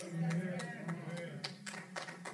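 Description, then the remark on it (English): Light, scattered clapping from a small crowd: sparse, uneven claps spread over a couple of seconds, with no steady rhythm, above a low background murmur of voices. “All right, we got some rainfall, golf clapping.”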